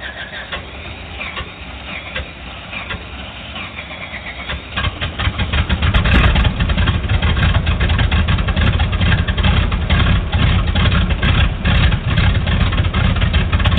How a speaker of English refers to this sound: REPA 27, you're clear to start engines.